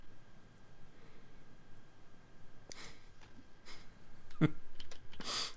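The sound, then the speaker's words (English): Quiet, irregular clicks of someone typing on a computer keyboard, a few sparse taps and short bursts over a low background hum, with no one speaking. “Sorry, I'm just typing.”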